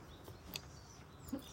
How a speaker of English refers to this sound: That's her clucking around in the background.